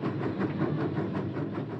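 A Santa Fe passenger train headed for Chicago rolls steadily along the rails, a continuous low rumble with faint rhythmic clatter from the wheels, fairly loud, with no voices.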